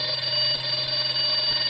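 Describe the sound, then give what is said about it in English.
An alarm clock rings in a steady, continuous electronic buzz, loud, holding unbroken for the whole moment with no voices. In a film scene, it goes off beside a man asleep in bed. “His alarm went off. He jumped up suddenly and turned to look at the alarm clock.”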